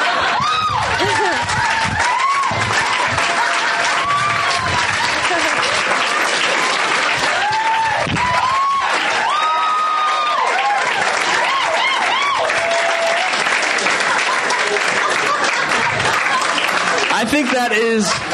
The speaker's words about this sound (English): I think that is the loudest applause I've ever heard for a story here.